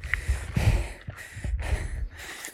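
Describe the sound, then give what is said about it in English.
Heavy, labored breathing of a runner climbing during a run, in a steady rhythm: about three loud, breathy huffs, each inhale and exhale rasping through the mouth, with low rumbling noise underneath and no talking. “I wonder if any of this tape is usable because it's just a lot of heavy fucking breathing.”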